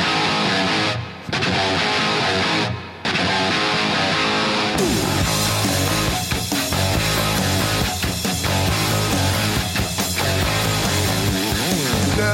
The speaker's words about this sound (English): So just that opening riff, yes, is just amazing.